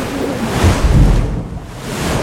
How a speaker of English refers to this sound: Out of nowhere, a tall wave smashed into the side of her face.